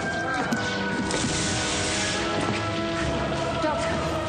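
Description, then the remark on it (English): Rain falls as snow turns to rain, in a steady, dense hiss that fills the whole stretch without pause, fairly loud, with faint sustained tones and scattered small knocks underneath. “The globe, it's turning to rain.”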